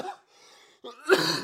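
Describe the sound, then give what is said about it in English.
A single forceful cough bursts out after a brief breathy wheeze, rough and throaty with no talking around it, from a person coughing because of the near-freezing weather in South Georgia. “I might cough a bunch tonight because the weather, boy.”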